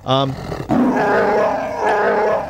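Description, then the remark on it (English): A Chewbacca Wookiee roar sound effect: a brief, high, tonal yelp leads into a loud, raspy growling roar that wavers in pitch and holds for about two seconds, with no talking. “I'm sorry, Chewbacca was just... wanted to chime in and say good morning to you as well.”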